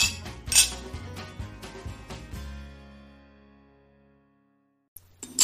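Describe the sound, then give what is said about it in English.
Glasses clink together in a toast, a quick cluster of bright strikes followed by a clear ringing tone that slowly fades to silence before a brief final clatter. “Well, I think it's a cheers to that.”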